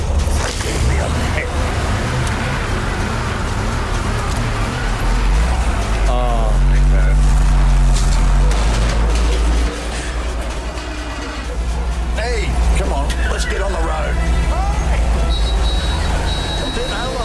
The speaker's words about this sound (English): Bit of crunching of the gears. Was that bins being knocked over? There was bins being knocked over. I think a car got run into. There was a few bunny hops in there as well.